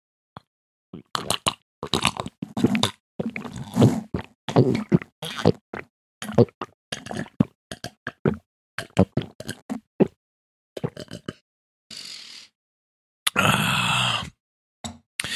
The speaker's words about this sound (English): I just took some of this pre-workout supplement, stirring it in with a glass of water. It's going to keep me fueled through this game. I'm going to even let you listen to me drink it.